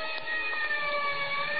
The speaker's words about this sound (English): And somewhere in the distance, I heard a siren.